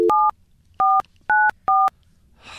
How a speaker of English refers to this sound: I'm nervous. Mostly just to get the phone number right. Yeah, watch those sausage fingers. Don't dial wrong.